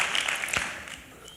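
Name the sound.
audience clapping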